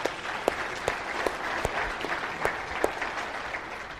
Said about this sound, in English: When you ask God to do stuff like that, give God a round of applause for that.